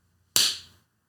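One sharp hand clap, a sudden bright crack that decays quickly into a short ringing tail, with silence before and after.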